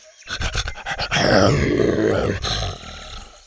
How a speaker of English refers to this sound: Buck's tongue hung out his fanged mouth, and he started to pant excitedly when he caught wind of the wonderful smells coming from the galley.